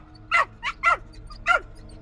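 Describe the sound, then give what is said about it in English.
A dog named Trixie in the next yard lets out four sharp, urgent barks as an alarm call in quick succession, loud and insistent, with brief pauses between them and a low background hum. “The alarm call.”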